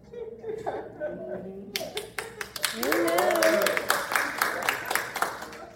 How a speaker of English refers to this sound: Now I don't know whether to take that as good or bad. How do I take that clap?